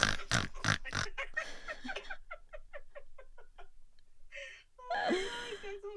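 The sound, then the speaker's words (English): A person imitates a pig, first with harsh breathy snorts, then a quick rhythmic string of short grunting snorts, ending in a brief squealing oink. It is fairly loud. “Did they lift up their little hoof? They snorted.”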